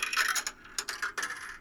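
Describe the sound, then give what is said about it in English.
A coin-drop sound effect: a quick flurry of bright, metallic clinks followed by a few separate jingling hits, trailing off over under two seconds with no voices. “Insert coin.”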